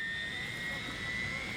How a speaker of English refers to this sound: I try to put that out of my mind, though, as we climb aboard our modified high-altitude chopper.